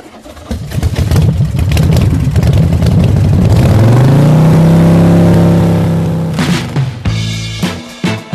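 vehicle, motorcycle engine revving

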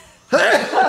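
human body sound, sneeze

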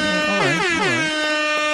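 sound effect, air horn sound effect

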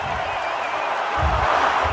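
crowd, arena crowd cheering

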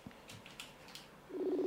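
signal or alarm, phone keypad dialing tones

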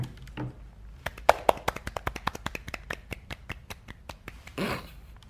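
crowd, hand clapping

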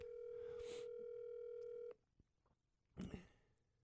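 signal or alarm, telephone dialing tones

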